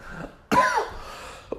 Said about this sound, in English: Would not be an episode without me coughing.